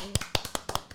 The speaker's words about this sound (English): Let's give him a little golf clap.